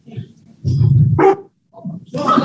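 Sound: puppy barking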